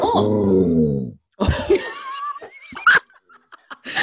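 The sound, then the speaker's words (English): A dog lets out a drawn-out yelp, then a string of excited, high-pitched whines and short yips over a few seconds at a cat strolling past the window, with no one talking. “On that note, my dog is here and there's a cat that has just strolled past the window.”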